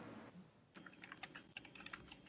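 Rapid, irregular clicks of someone typing on a computer keyboard, fairly quiet, with no one talking over it.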